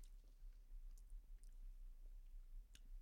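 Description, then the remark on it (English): Quiet crunchy chewing of a mince pie, with a few sharp crackling bites scattered through steady mouth sounds and no talking. “I don't know how I feel about that crunch.”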